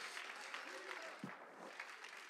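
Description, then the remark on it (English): An audience at a morning church worship service claps in praise to God in a dense, steady wash of applause that holds an even loudness throughout, with faint voices briefly audible beneath the clatter. “Oh, come on, clap a little bit longer.”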